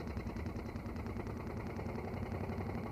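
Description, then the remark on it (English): A vintage car engine idles while stopped in the jammed right-hand lane of a two-lane carriageway on the road to Brighton, while the driver examines the rear end of the car. A steady low rumble with a fast, even chugging pulse holds at a constant moderate level throughout, with no voices. “Suddenly there's quite different sound from her.”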